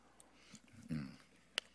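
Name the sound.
sipping water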